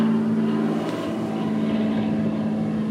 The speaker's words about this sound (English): Now there is an airplane, a small airplane, passing. So I'll wait a minute.